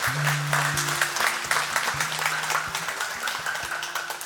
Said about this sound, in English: Will you give them a round of applause, those who raise their hand?